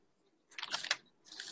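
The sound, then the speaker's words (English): Paper rustles as pages of notes are flipped: a crinkly, hissy burst of about half a second, a short pause, then a second softer rustle. The sound is fairly quiet, with no voices. “I have to flip my notes, so if you hear paper rustling, I'm not sorry.”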